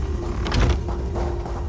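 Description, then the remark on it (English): A video game door mechanism grinds open after a charged crystal is inserted into the labrum: a steady low mechanical rumble with a sustained hum and a brief scraping burst partway through, lasting under two seconds with no voices. “See what's behind that door.”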